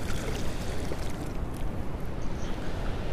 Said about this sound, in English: Okay, we got a big wave coming in. And my boots did not help there. Oh, this is great. Oh, that water's cold.